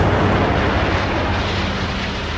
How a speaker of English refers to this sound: We can't see a second plane in the picture. There we see the explosion. Probably 4 to 8 floors. I don't know which tower it is.